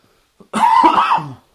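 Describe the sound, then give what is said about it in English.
A harsh, raspy cough, a short throaty fit lasting about a second after a small intake of breath, with no talking around it. “Sorry, the cough is still here.”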